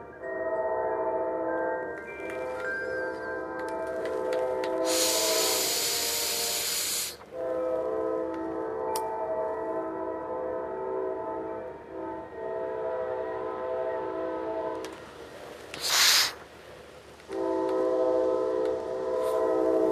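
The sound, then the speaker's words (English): A train rumbles past, coming from the opposite direction, its horn sounding in long sustained blasts with loud hissing bursts in between, all over a continuous low rolling rumble. “Man, that train just keeps coming.”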